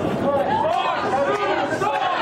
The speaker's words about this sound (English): Here's a little bit of that footage. A loud and very boisterous crowd.